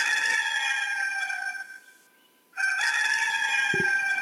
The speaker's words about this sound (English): Woo-wee, I love me a good Gamecock crow in the morning.